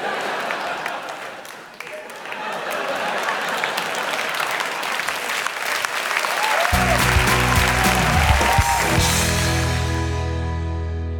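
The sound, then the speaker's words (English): An audience breaks into loud, sustained applause, a dense steady patter of many hands. Partway through, a low sustained musical tone swells beneath the clapping before it all fades out. “Round of applause.”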